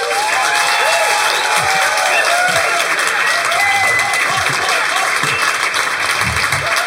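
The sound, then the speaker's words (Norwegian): An audience at a talk about mushrooms applauds warmly to welcome the leader of Oslo og Omland Sopp- og Nyttevekstforening, a dense wash of many hands clapping at a constant loudness for several seconds, with faint voices and a whoop or two rising through it. “Gi en varm applaus til mannen som skal guide oss gjennom dette meget underlige universet.”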